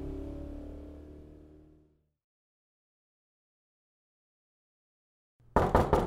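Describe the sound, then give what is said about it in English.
A low engine-like hum fades away into silence, then a quick cluster of three or four loud knocks on a door sounds near the end. “After 5 minutes of knocking”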